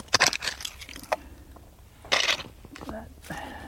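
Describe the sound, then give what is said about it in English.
A rake drags through dirt in a few quick, gritty scrapes, exposing earth at an old bottle dump while searching for buried bottles, then pauses before one more rough pass, with a faint voice murmuring briefly near the end. “Using his rake, he exposes earth.”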